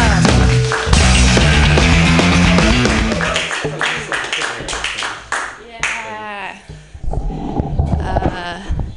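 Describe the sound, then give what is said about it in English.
An audience claps steadily over loud walk-on music for several seconds as the next comedian is brought on, and the applause thins as the music continues with voice-like sounds near the end. “Everybody clap wildly”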